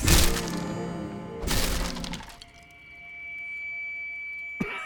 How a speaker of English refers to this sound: Devastation seared through him, and with a scream, he smashed his guitar onto the stage floor.